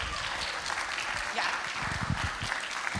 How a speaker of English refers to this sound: We are so grateful to you. We truly, truly could not do it without our volunteers. A round of applause for the volunteers.